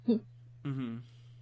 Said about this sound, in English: You can also hear my cat in the back yelling because the door's closed.